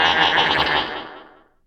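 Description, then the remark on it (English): A single loud, wavering goat bleat rings out with heavy echo, its reverberating tail fading away over about a second. No one speaks. “Space goat.”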